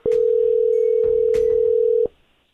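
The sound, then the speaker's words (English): A phone ringback tone as a repeat outgoing call is placed from a restricted number: one steady, continuous electronic hum that lasts about two seconds and then cuts off, with faint line clicks and noise underneath and no voices. “Let me call him one more again, okay”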